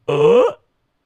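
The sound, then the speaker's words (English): A single drawn-out, throaty croak from a person imitating a frog on request, lasting about half a second, loud, then silence. “Do a frog.”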